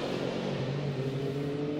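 A sports race car engine roars as it accelerates past during a 2019 WeatherTech SportsCar Championship race at Mid-Ohio, its pitch climbing steadily through the revs, loud with a dense, continuous mechanical drone and no one speaking.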